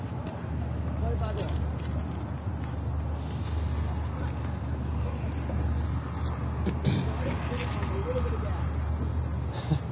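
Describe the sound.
A car engine struggles and rumbles steadily for the whole stretch, a low, rough drone with faint background voices murmuring beneath it, as some men have car trouble.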